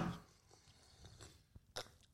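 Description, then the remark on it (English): Someone quietly sips a drink: a soft breathy slurp at the start, a few small wet mouth clicks, then a brief gulping swallow. Faint, with no talking. “Let me just have a sip.”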